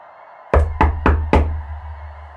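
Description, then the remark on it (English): Four sharp knocks on the hollow wooden hull of a boat in quick, even succession, resonant with a low booming body, each hit ringing briefly before the next, then fading into quiet. “But then there was a knock.”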